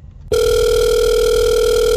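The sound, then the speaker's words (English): After a brief quiet moment, a loud, steady telephone tone switches on and holds unbroken, like a line tone heard through the handset, as a number is dialed to call the Game City store, with no voices. “So let's see, picking up my phone, and I'm putting in the numbers. All right, hopefully he answers.”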